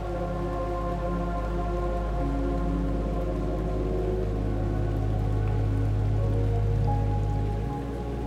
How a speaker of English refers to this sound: Looking over at the pool, you notice that a handful of raindrops are dropping into the pool.